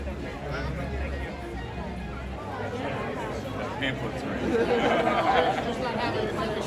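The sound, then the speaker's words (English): Dense crowd chatter at an outdoor Walt Disney World event for the 50th, covered by press, many overlapping voices blending into a steady hubbub with no single words standing out, growing slightly louder toward the end. “We're going to get a chance, despite all the crowds, to ask him a question or two.”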